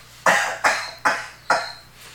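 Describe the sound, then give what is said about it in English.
Four quick coughs in an even rhythm, each one short and breathy, sounding slightly muffled, made with the head turned away from the microphone to show how to cough, with no talking. “I don't have to cough, but I'll show you how to do it.”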